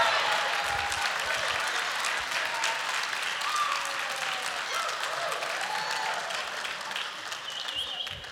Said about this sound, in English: You're cheering.